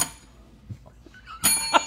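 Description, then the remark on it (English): A bicycle-style bell, the Kevin Vick Memorial Bell, is rung while being held and dampened, giving a short, muffled ding that cuts off quickly instead of ringing out, followed by a second brief dull strike, fairly quiet. “Yeah, you can't dampen the bell and then try to ring it.”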